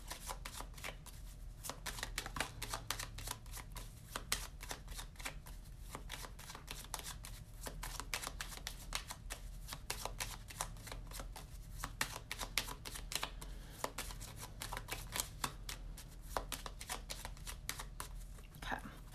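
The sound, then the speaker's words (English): A deck of Lenormand oracle cards is shuffled steadily for about twenty seconds before a reading, a dense flurry of crisp, papery riffles and slaps with a low hum underneath and no talking. “All right, let's do a Lenormand real quick and see if we get any other direct messages for today.”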